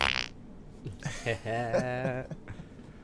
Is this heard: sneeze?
no